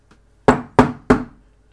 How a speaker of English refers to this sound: I sat in my office about 10 minutes after stubbing my toe, and I received a knock on the door.